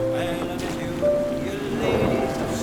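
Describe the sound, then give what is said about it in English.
A speedboat's engine drones with a steady tonal whine over splashing water. It grows slightly louder toward the end as it heads toward another boat, with faint voices underneath. “What is that? A speedboat.”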